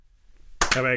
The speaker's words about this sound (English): Yep. Record. I've started this. Yep. Someone clap for sync.